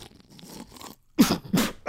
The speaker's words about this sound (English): Fuck, I just spit it all over myself. You pulled a me. oh, it's all over me. And it's got that red dye in it, so you're screwed.